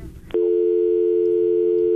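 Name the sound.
telephone busy tone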